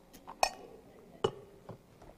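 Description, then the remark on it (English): Two sharp, bright clinks of glass ring out about a second apart, followed by a softer knock, as a glass is handled while a preacher gets a little water during a sermon, with no one speaking. “Let me get a little water.”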